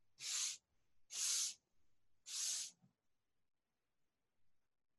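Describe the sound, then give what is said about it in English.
A creature sniffs the air in pitch darkness in three sharp, hissing bursts spaced about a second apart, each breathy and fairly loud, followed by near silence with a few faint rustles. “So you hear it sniffing the air.”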